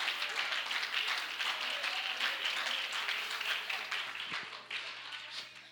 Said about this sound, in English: You ought to give the Lord a hand clap of praise right now. I feel the Holy Ghost.